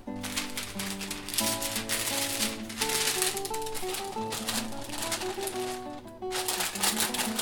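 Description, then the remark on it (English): Continuous crinkling and rustling of greaseproof paper as it is put and tucked over the top of a pot before baking, busy and irregular throughout, with tuneful background music playing underneath. “So, a bit of greaseproof paper perhaps over the top?”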